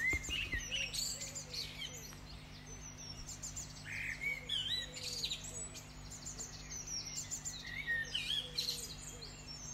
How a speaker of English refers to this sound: Well, I'm just standing beneath a beautiful male blackbird that's singing.